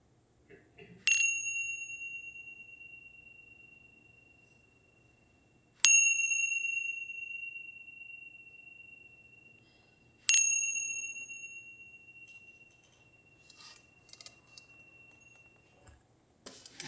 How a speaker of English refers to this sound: Taking a few cycles of breath, and then listening for the sound of the bell to open your eyes.